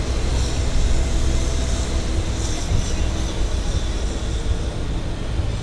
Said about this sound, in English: At this time, just want to remind you to remain seated at all times while the tram is in motion.